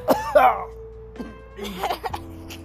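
A few short, rough coughs, two quick bursts at first and a couple of softer ones after, with a faint steady hum underneath.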